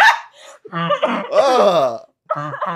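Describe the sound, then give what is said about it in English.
A person's voice imitates a wild animal's snarl in several loud, gravelly bursts, rising into a rough, strained growl before a short pause and a final snarling burst. “Can you give me a snarl, babe?”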